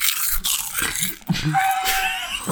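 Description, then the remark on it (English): Loud crunching as someone bites into crisp barbecue-flavored snack chips, a few sharp cracking bites followed by noisy chewing, with no talking. “Oh, now this, the sound of the bag, the sound of the crunch that I'm going to make at least.”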